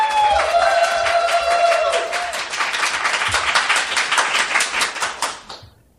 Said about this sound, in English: please applaud now